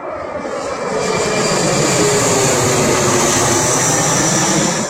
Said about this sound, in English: Like, that is a legit plane going right over his head about to land.